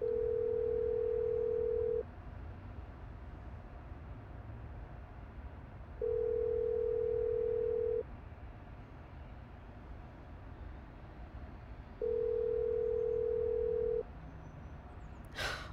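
phone call ringing out

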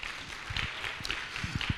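audience applause

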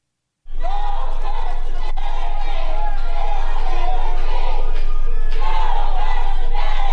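protest crowd chanting

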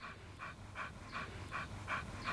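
dog panting

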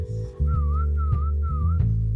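whistling

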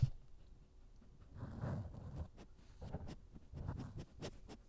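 dog sniffing

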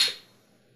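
beer glasses clinking

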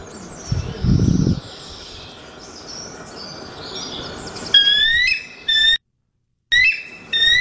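bald eagle call

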